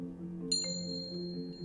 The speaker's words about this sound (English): Then a bell rang